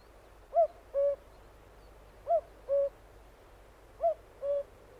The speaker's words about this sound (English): He especially loved the cuckoo, which sent its voice of mystery from out the woodland depths and wide open spaces, calling nature to rejoice at the advent of spring.